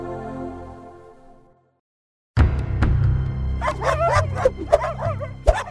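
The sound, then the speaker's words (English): Several dogs bark and yip in a loud, overlapping flurry of sharp barks over a rough background, preceded by a fading tonal hum and a brief silence. “I'd never been fully surrounded like this or feeling trapped by dogs.”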